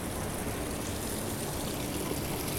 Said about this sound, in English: We have some water leaking out of a pipe there onto a gutter. This is all fascinating.